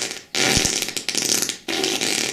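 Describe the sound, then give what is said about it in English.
A loud, raspy fart sound broken into three sputtering bursts with brief gaps between them, with no one talking over it. “We must fart on Derek.”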